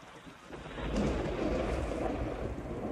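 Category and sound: nature, thunderstorm with heavy rain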